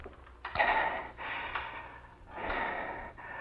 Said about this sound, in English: I lay back on the bed, gasping and waiting for my pulse to get back to normal.